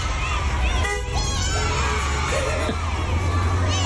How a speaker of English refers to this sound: But when they're all standing outside chanting, beep, beep. Yeah, yeah. So here they are waiting to go into the Panto yesterday.